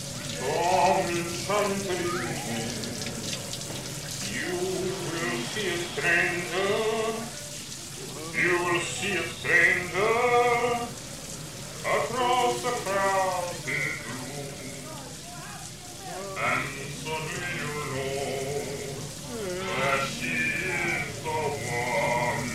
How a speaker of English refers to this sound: Sandra unpacks while Walker takes a shower.